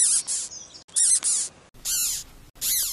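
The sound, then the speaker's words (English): A caterpillar's defensive noise, made to scare off predators: four shrill, squeaky chirping bursts in quick succession, each a rapid high-pitched whistle-like squeal separated by short pauses, heard alone without any talking. “Some caterpillars make that noise to scare off predators.”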